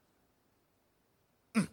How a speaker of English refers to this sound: What coughing is this now? Huh? Isn't this the house of God? Don't you know you can disturb the anointing? You mean a cough can disturb the anointing?